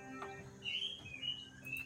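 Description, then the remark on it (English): Pet parrots chirp and squawk in a quick string of bright, shrill calls, fairly faint, over a low background hum with no talking. “And by the way, the chirping isn't these things. Bloody parrots are going crazy.”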